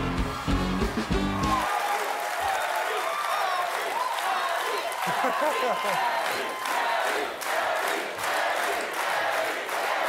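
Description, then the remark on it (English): A studio audience bursts into loud, sustained cheering and applause, with whoops and shouts rising over dense clapping that continues steadily for the whole stretch, full and rich. “Thank you for bringing in the crowd.”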